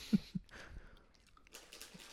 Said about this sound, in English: You're munching away.